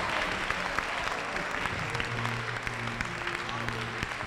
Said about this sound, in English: Are you clapping your hands for the Lord? Somebody?